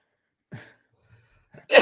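A short, rough exhale is followed by a sudden loud, harsh cough that bursts out hard and raspy at the end, with no talking around it.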